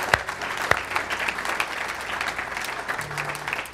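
A church audience claps steadily for those who have just given their lives to God, a dense wash of many hands with a few sharper slaps near the start and a faint low hum underneath.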